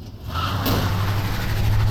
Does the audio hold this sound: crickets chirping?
no